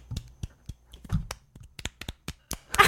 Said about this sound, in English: There you go. Not clapping, but it's tapping. It's tapping, yeah.